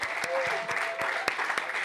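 A round of applause, dense steady clapping from a group with a few sharper claps standing out, continuous for a couple of seconds at moderate loudness.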